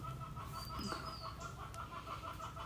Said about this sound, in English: Are those owls? I think those are owls.